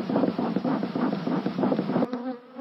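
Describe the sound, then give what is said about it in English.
A beekeeper pumps a bee smoker after lifting the top off a hive: the bellows puffs in quick rhythmic bursts of breathy hiss over a dense, droning hum of buzzing bees. The puffing stops near the end and the buzzing carries on alone. “After lifting the top off one of the hives, she pumps a smoker to calm the agitated bees.”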